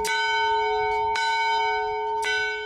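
An old bell from a 1900 schoolhouse, used as the Boys Camp dinner bell, rings out loudly, struck three times at a steady, unhurried pace, each clang blooming into a rich, lingering metallic tone that hangs in the air between strikes.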